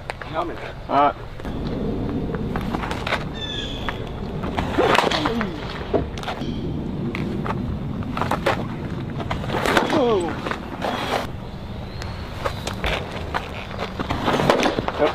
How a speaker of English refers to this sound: I saw the mechanics. I saw his fucking huge-ass quads. And then I heard the fastball, and I was like, oh, damn, like, this kid is different. Listen to this.